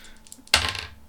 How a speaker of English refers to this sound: Hold on, just need to get another dice because it's a two dice kind of guy.